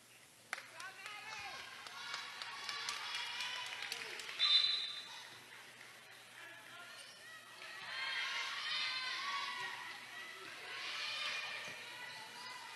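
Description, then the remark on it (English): A large crowd at a game lets out a collective groan after a missed shot is knocked out of bounds, a broad murmuring swell that rises twice and fades, with scattered ball bounces and indistinct voices underneath. “Hear the crowd give a collective groan.”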